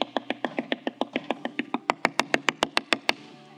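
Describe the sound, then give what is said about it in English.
A long, rapid run of knocks on a door, steady at about five raps per second, turning sharper and louder partway through, with no talking; it stands for Peter knocking on the door. “Verse 13, Peter knocked on the door.”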